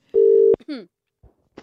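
A single loud, steady ringback tone of an outgoing phone call to the speaker's sister-in-law, lasting under half a second, then a short voice fragment and a couple of faint clicks.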